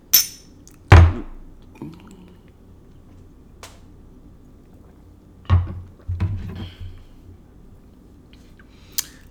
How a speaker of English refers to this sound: It is time for our last call. If you have alcohol available, please pour yourself a shot and take a shot with us.